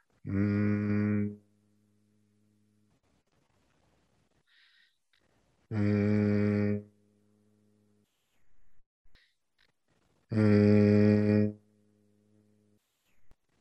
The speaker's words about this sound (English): Okay, now you're going to do three palm hums. So go ahead and rub your hands together. Breathe in. On the exhale, I want you to do a humming sound. Keep your mouth closed.